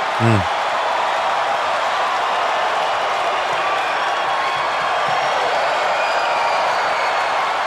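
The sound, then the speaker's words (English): A large wrestling arena crowd roars and cheers as a wrestler is tagged into the match, a dense, unbroken wash of noise that stays loud and steady throughout, with a brief voice cutting in at the very start. “All Arn had to do was back up and tag in Flair, and the crowd went wild. They are on fire for Flair here.”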